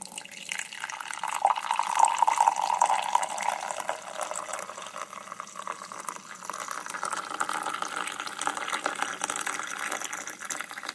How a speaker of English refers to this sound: And So my wife grabbed a recently cleaned mug and lovingly began to pour the black gold into the cup.